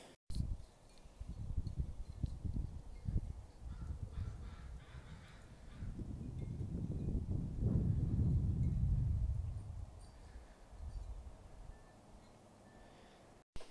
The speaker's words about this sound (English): Damn, sometimes my house sounds super spooky. Dudes, could you guys hear the crows in the wind chimes? In the wind? Anyway, sorry. I just had to record that. I don't know why, but it's awesome.